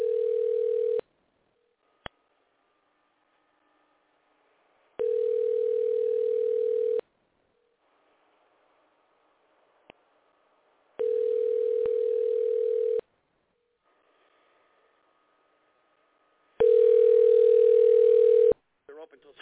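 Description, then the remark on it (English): A telephone rings on the line four times, each steady two-second tone separated by a few seconds of quiet, heard as the ringback while a call is placed to a TD Bank branch in Waterbury; the last ring sounds louder. “But let me get this branch on the phone first. Let's see what happens.”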